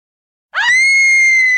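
A single loud, high-pitched scream sound effect tied to the Scream films bursts in abruptly, rising in pitch at first and then holding a long, sustained shrill tone with no talking over it.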